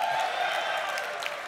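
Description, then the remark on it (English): A short burst of audience applause at a video game panel, applauding a Housemark game, a dense, steady patter of many hands clapping together at a moderate level with no voices over it. “Round of applause. We like it.”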